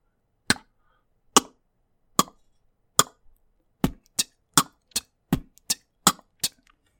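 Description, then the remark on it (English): A voice makes sharp, unvoiced beatbox K clicks by saying the letter K with the vocal taken out and the initial hit accented, eleven crisp percussive hits that start spaced out and then speed into a quicker, steady rhythm, with no talking. “So you're going to say the letter K, K, K, K, and you're going to really accent that initial hit of the K, K, and you're going to take the vocal out of it.”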